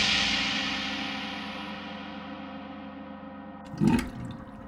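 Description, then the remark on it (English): A loud rush of water slowly fades and drains away, then a sudden gurgling burst spurts up near the end as water belches out of an old village well, with no voices present. “Almost immediately came a great glugging sound from the old village well, and with a huge spurt, water began to belch out.”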